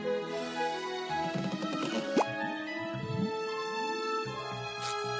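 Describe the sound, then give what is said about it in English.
Bubbles are blown and pop in a run of wet plops, drips and small bursts over about five seconds, fairly loud, with a steady tonal hum beneath. “Basically, the song is about just how bubbles are blown and then they're dead, you know?”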